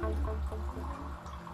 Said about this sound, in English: Electrolyte water and supplements have been dispensed from the unit on the southern wall.